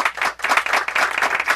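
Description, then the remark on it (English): Light applause from a small studio crowd, a steady patter of many hands clapping at once, moderately loud, with no voices over it. “And the crowd has some light applause.”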